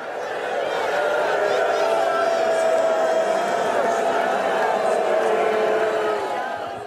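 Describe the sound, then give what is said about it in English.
A large stadium crowd in Indianapolis boos a player as he walks toward the tunnel, a dense, sustained roar of many voices holding steady and loud for the whole stretch, with a low drawn-out groan running through the noise. “And as he started approaching the tunnel, the crush of boos got louder and more personal.”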